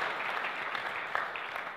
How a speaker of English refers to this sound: Wasn't that extraordinary? Just absolutely another round of applause.